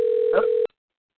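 A telephone gives a single short electronic ring, a steady beeping tone lasting under a second that stops abruptly, followed by silence; nobody answers it.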